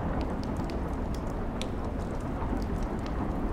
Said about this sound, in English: Think about the individual raindrops and how they hit the floor around you, making a splash that's ever so delicate.